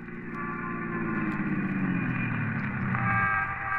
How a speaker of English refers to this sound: We climbed into a squad car and hurried back